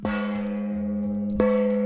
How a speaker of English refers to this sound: Audio Files. You stepped over the gong!